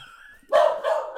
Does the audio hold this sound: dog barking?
yes